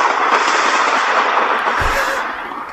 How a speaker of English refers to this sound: You like that? Okay. Nice summer thunderstorm.